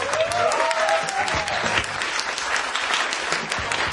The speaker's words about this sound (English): You know you're funny when you get applause breaks.